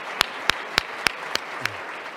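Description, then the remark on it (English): Six sharp hand claps land at an even, steady pace, crisp and moderately loud over a low background hum, with no voices. The claps are applause for the panelists at the end of a club's housing panel and sound sparse, more like a few people than a full crowd. “So one more round of applause for the panelists.”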